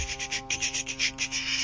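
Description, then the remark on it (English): Quick, soft clicking taps in a steady run, about ten keystrokes in under two seconds, like typing on a keyboard, over a low, constant hum with no talking. “So you like kind of like hear some typing, just like”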